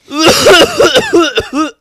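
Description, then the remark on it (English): A loud, raspy cough and throat-clearing right up against the microphone with a hand held over it, a rough voiced burst lasting under two seconds, ending in a short final hack, with no talking. “Yeah, I'm really glad you chose to just burp and cough right into the mic.”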